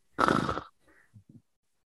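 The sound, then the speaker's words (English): A person imitates a snore with one loud, rough, rattling snort, followed by a couple of faint, short grunting breaths, then silence. “It smells of lavenders, and as everybody else notices, you get this funny look on your face, like it's extremely pleasurable, and then you just drop on the bed, sound asleep, start snoring.”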